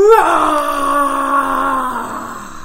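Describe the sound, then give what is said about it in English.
A voice imitates a dinosaur roar: one long, loud, strained growl that swoops up at the start, holds steady for a couple of seconds, then sags slightly lower as it fades. “Can you do a big dinosaur roar for me?”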